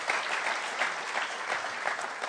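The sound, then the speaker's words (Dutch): Steady applause from an audience for the band fills the whole moment, a dense, continuous patter of many hands clapping at an even level with no voices on top. “Can I have the band een grote applaus krijgen?”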